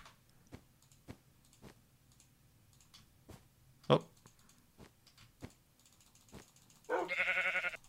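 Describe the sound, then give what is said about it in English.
A sheep lets out a single loud bleat near the end, following a steady run of soft, regular clicking sounds and one brief louder knock. “Oh, no, sheep.”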